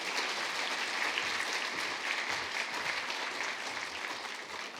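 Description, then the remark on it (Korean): A church audience at an Eve worship service applauds steadily to welcome a guest speaker, a dense wash of many hands clapping at an even level for several seconds, with no voices over it. “우리 한번 크게 박수함으로 환영하면 좋겠습니다.”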